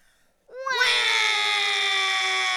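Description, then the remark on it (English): A baby in a cradle bursts into a loud crying wail after a brief silence, the pitch sweeping up and then holding as one long, steady, piercing howl. “And Finn in the cradle began to yell.”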